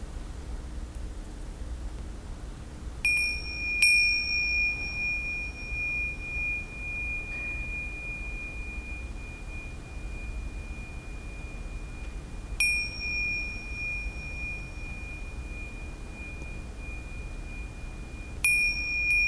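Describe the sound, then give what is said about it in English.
A ceremonial bell is struck three times at slow, uneven intervals to end a session, each clear metallic tone ringing out and sustaining long after the strike, heard alone over a faint background hiss. “I will use the ceremonial bell to finish the session.”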